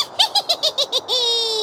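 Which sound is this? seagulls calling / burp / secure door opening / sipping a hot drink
seagulls calling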